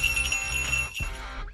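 A reindeer bell rings steadily on a show just before Christmas, a bright sustained metallic shimmer with a brief dip near the end before it rings on, no voices over it.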